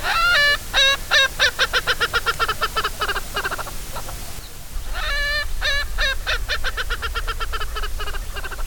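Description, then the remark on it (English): An Erckel's francolin gives a loud, laughing cackle: two long bouts of rapid, harsh repeated notes that slow and trail off, with no one talking. “If you hear a loud laughing cackle, but there's no people around, there's a good chance there's an Urkel's francolin nearby.”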